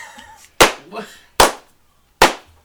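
Three sharp, loud hand claps land at a slow, even pace, each ringing briefly, with a faint voice murmuring before and between them.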